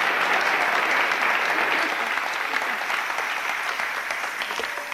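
Steady, dense applause from an audience fills the whole stretch, many hands clapping at once with a bright crackling texture, loud and close, fading very slightly toward the end.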